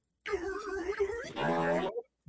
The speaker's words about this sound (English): I literally spent like 30 minutes the other day looking up fart soundboards. Because farts are hilarious. Especially this one.